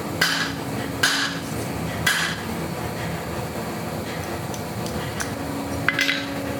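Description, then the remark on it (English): A hardened, fairly high-carbon steel file, quenched in water, snapping under sharp metallic blows: about four bright, cracking impacts at uneven intervals, each with a brief high ring, over a steady low hum and no talking. “It's a file, which is fairly high carbon. I quenched it in water.”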